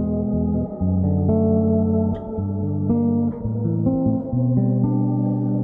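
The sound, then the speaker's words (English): A guitar drenched in shimmer reverb plays sustained chords that swell and wash together, with octave-up repeats ringing faintly above the notes and no voices present. “If I were to turn up the mix of this shimmer reverb, you can really hear it. There's that octave up sound.”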